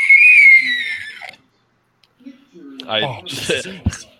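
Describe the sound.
A loud, shrill, wavering screech rings out for about a second, a voice imitating a screaming hellbat, or fellbat, ridden in on during a fantasy role-playing game, followed by a pause and then rough, breathy vocal noises.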